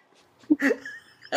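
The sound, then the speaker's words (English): A short, abrupt burp, followed by a brief throaty voiced sound and another sudden burst at the end, with no clear speech. “That was a great burp”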